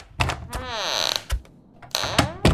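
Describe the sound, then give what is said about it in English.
A door creaks open with a long, drawn-out groan, bracketed by soft knocks and thuds, followed by a second shorter creak and a final thump. “I sure wish I had knocked on your door before the last time I came in here.”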